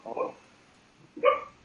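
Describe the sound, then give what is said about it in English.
Two soft, muffled woofs about a second apart, short and breathy, from a female dog barking in its sleep while dreaming, fairly quiet with near silence between them. “Oh, your dog's sleep barking.”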